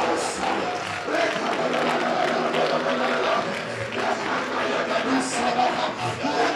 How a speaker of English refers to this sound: Bow in some 1 minute, clap your hand and pray. Clap your hand and pray.